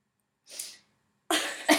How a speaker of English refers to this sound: Sniffle. Sorry, this became her sniffle is like her serious, like, okay. Yeah, so if you hear the sniffle, it means shit's about to get real. My sniffle is like the equivalent of the verbal goofu, okay?